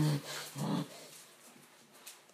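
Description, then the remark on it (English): A dog is shooed off a table by its owner: two short, loud, low vocal bursts, then quiet with faint shuffling as the dog moves to the other side of the table. “Leo just tried to stand on my private parts. Gross.”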